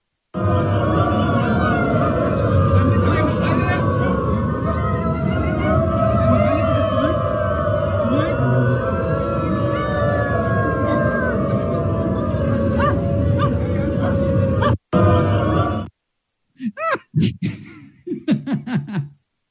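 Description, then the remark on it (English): A large crowd of about 1,000 people at the Potsdamer Platz railroad station in Berlin, Germany, howls and barks like dogs, a dense, continuous chorus of wavering howls and yelps, breaking off abruptly near the end into a few scattered short voices. “1,000 people who prefer to be recognized as not humans but canines organized a gathering at the Berlin Potsdamer Platz railroad station in Germany. Communicating only by howling or barking at one another.”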